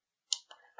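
A single quiet sneeze: a sharp hissing burst that drops into a brief, breathy voiced tail, with nothing else around it.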